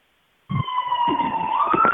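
A police car siren cuts in abruptly and holds a loud, high wailing tone that slowly climbs in pitch, with a low rumble of traffic underneath and no talking.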